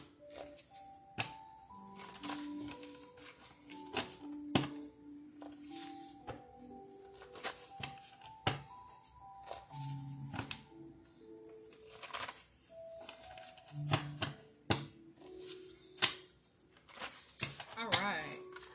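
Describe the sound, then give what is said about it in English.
A deck of cards is shuffled for a card reading: a rapid series of papery riffles and sharp slaps repeating across the whole stretch, with soft melodic tones or humming sounding quietly underneath. “Let me shuffle real quick.”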